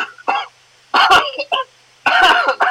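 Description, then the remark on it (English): A man gives a series of exaggerated, staged coughs while making a money gesture with his fingers: several short harsh bursts, loud and clearly put on rather than a genuine cough. “pretending to cough whilst doing the money fingers.”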